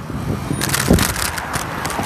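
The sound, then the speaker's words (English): Steady street traffic noise at the busy intersection of Denison and McCowan, a broad rushing hum of passing vehicles, continuous, with a brief thump partway through; no one speaks. “So much cars, bro. Who made these much cars?”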